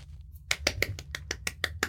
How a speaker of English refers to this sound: Thea's legit clapping from the other side of the cavern, just like, bravo, sir.